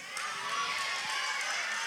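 A crowd of children, asked for Star Wars Jawa calls, cheers and shouts together instead, a dense, high-pitched, steady roar of voices lasting a couple of seconds without letting up.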